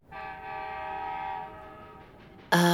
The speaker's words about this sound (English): Is that a train I hear? It sounds like it's coming this way. Oh, I think you might be right. That does sound like a train. But there are no trains in Pflugerville.